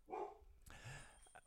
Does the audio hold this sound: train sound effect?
no